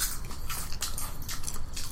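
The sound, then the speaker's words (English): Crunchy chewing of bland, salted popcorn, a steady run of crisp, crackling bites with sharp high-pitched snaps repeating roughly every quarter second, fairly loud with no voices. “It's very bland popcorn. I taste the salt. Yeah. I'm putting a lot of it in my mouth.”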